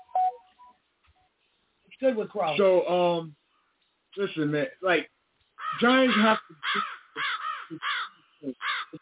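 A crow caws repeatedly in harsh, raspy bursts, clustered in quick runs separated by short pauses, fairly loud with a slightly thin, band-limited tone.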